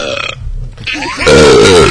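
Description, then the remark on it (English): A loud, drawn-out burp, starting low and rumbling before swelling into a long, voiced belch that holds steady to the end. “I'm burping.”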